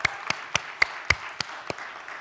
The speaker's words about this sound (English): And we just recently reached 12,000 food boxes. Shout out to that. Hand clap.